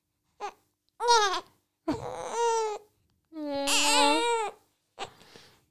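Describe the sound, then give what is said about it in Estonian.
A baby babbles in five short, high-pitched vocal bursts, some drawn-out and wavering, with brief pauses between them and no adult talking. “Sa tead ka midagi öelda”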